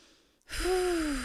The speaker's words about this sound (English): Whew, I'm so out of breath as well because like it's pushing like on my diaphragm.